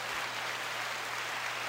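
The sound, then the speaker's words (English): A short burst of a preloaded applause sound effect, a wash of many hands clapping at even loudness that cuts off suddenly at the end with no fade-out. “And then we got applause, which stops very quickly. There's no fading.”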